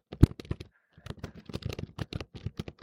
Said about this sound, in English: Okay, I just had to add something here because I will forget if I don't write it down. And yeah, Laura, if you heard typing, it's kind of like too bad.